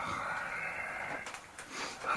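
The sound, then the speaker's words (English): A person makes a rough, breathy growl with their voice, imitating an animal, held steadily for about two seconds with no words spoken. “Yes, there's a growling.”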